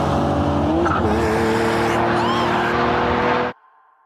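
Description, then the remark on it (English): A loud car engine roars as tires squeal and skid. The car has its headlights on and does not stop, and it hits a man. The sound rises to a screeching peak before everything cuts off abruptly, leaving a low, faint hum. “Michael pushed me out of the way. But the car hit him.”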